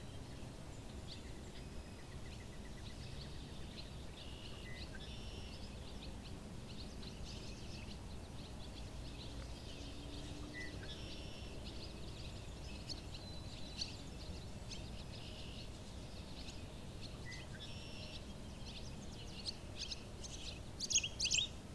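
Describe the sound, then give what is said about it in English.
Barn swallows twitter and chirp in quick, high bursts over a steady outdoor hiss, with brief call clusters scattered throughout and a livelier flurry at the end. “There's the barn swallows.”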